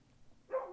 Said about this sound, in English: Sorry about that. The dogs were making a lot of noise, and can't have that on the podcast. Dogs got to be quiet.